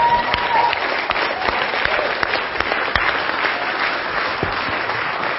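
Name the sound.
audience clapping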